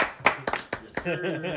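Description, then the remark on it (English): A few sharp hand claps in an uneven rhythm, crisp and fairly loud, followed by a person's voice. “I feel like every time that we say $1, we should just clap.”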